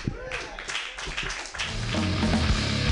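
An audience claps in a dense, steady patter of overlapping hand claps as the host thanks one performer and introduces the next, with voices and a low, tonal hum rising beneath the applause in the second half.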